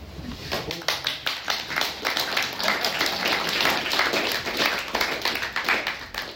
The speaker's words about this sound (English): Everyone's woken up again down the back with that clapping. It was great.